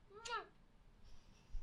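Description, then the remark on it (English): A single short meow from a male pet cat, rising then falling in pitch, clear, followed by quiet room noise. “I love this cat. I love my cat.”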